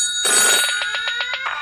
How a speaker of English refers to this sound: It's like a rotary phone?